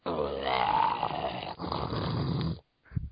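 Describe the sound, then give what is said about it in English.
A person imitates the growling, monstrous alien dog of Kyber from Ben 10 Omniverse with a raspy, rumbling voice: two long snarling growls, then a brief grunt after a short pause, loud. “In Ben 10 Omniverse, I looked at your credits and you were credited as Kyber's dog. I was wondering how did you do that?”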